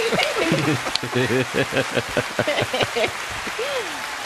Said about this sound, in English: Everybody? Everybody. Wow. Applause. Wow.